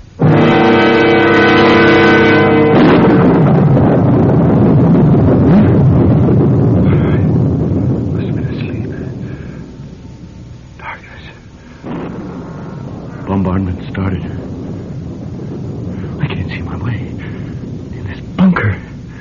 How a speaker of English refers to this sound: Knew there'd be a storm tonight. Storm? Thunder?